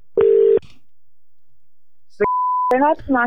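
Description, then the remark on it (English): A single short burst of telephone ringing tone on an outgoing prank call to a mechanic, loud and steady, followed by silence, a brief higher beep, and then a voice starting to talk. “It's ringing.”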